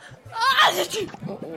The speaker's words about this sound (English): That's my old day's wages you just shot. A whole day's work. Gone. In one sneeze.